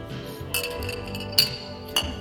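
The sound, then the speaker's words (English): Three sharp glass clinks ring out about a second apart as a cup of beer is slammed down, over a soft low background hum. No one speaks. “Cheers, mate. Slam down a cup of beer.”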